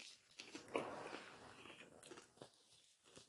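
people chewing food

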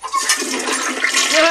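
toilet flushing

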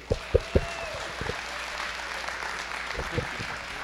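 audience applauding

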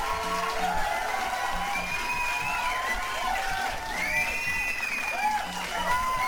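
applause and cheering

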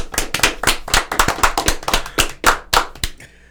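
hands clapping

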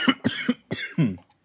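coughing

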